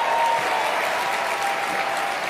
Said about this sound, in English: To raucous applause.